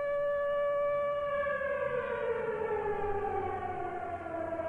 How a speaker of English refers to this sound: I wish there was just like a bell or something, like some sort of siren went off at arbitrary times, and that was how you knew that it was the holidays.